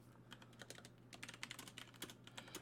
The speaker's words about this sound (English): Sorry, I was typing some things out here,